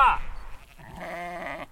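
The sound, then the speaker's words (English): A sheep lets out a drawn-out, wavering bleat, preceded by a brief rustle and fainter bleating, all within under two seconds; the sheep belong to a 70-year-old shepherd who moves them constantly from field to field in wolf country. “They have a German accent. Frank moves his sheep constantly from field to field”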